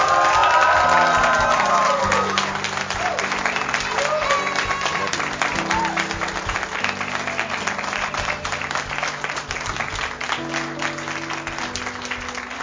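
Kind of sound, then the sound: crowd, audience shouting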